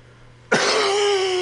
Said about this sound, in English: Oh, yeah. That's it right there. That's the cough.